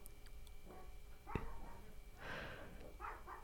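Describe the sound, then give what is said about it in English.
A 140-pound bull mastiff sniffs and snorts, with a few breathy, rustling bursts of air separated by short pauses over a low hum. “But I have a 140-pound bull mastiff that will scare the living shit out of your assistant.”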